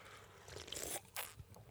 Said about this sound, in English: Sorry to everyone who has to listen to us slurp our drinks.